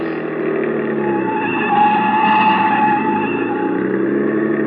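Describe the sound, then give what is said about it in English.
A car engine roars loud while tires squeal in a sustained, wavering screech as the driver takes fast corners through the streets, with another car following behind. “Hey, try a couple of fast corners. I want to make sure.”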